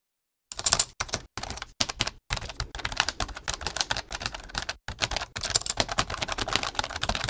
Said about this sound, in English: Also, the PowerBook's keys are a tad rubbery compared to the harder, more tactile keys on desktop Macintosh keyboards.